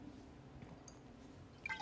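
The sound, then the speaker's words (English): Someone takes a quiet sip of water and swallows, soft wet gulping and liquid sounds, with a faint squeak near the end and no talking. “Excuse me, I've decided to drink more water while I'm doing this too, so I don't have like such a bad throat or whatever.”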